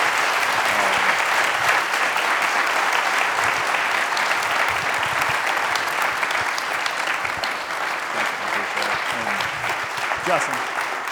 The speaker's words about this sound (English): So I could ask for a round of applause. Thank you so much.